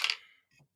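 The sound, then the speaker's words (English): A short, sharp clatter of dice hitting a hard surface and rattling to a stop, followed by a smaller second tumble, as hit dice are rolled in the background of a tabletop role-playing game. Fairly quiet, with no voices. “Tim just calmly rolling dice in the background.”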